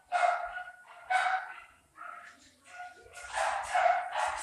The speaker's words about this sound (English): I'm here at our house on Albuquerque Hill. You can hear the dogs. Can you hear that?